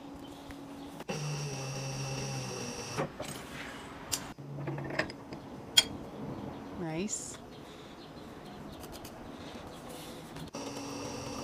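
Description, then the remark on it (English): A sewing machine made specifically for leather whirs in two short bursts, steady and droning, with clicks and mechanical ticks around them while people talk. “It's a really cool sewing machine. It's so leather. It's a leather. It's specifically for leather, yeah.”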